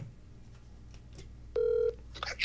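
A steady electronic telephone tone sounds for about a third of a second, followed by a cluster of short, higher dialing beeps as a phone call is placed, all over a low background hum with no one talking.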